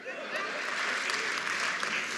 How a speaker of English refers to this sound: I love the applause. It's so fucking good in this room.